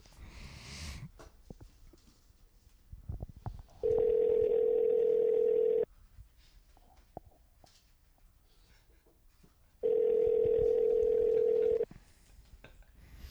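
telephone dialing and ringing

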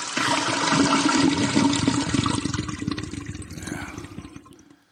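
toilet flushing

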